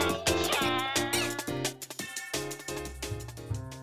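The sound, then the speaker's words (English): A cat meows over and over, loud, a quick run of insistent, drawn-out cries with no one talking. “I'll just let my cat take care of you, man.”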